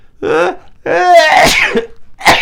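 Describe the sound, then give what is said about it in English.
A short gasping inhale builds into one loud sneeze with a drawn-out, breathy release, followed by a brief burst of voice right after. “sorry. Bless you.”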